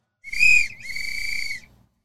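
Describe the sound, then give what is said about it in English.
A loud, shrill referee's whistle blown twice in quick succession to signal halftime, a short sharp blast followed immediately by a longer sustained one, clear. “Blow the whistle. Blow halftime. The whistle.”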